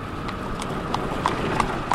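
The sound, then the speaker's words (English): In Pennsylvania, the horse hooves of an Amish buggy passing a truck clip-clop in a steady, even rhythm, about six sharp, hollow knocks in two seconds, heard over a constant low rumble. “In Pennsylvania, an Amish buggy passes by Wormbold's truck as he continues his drive”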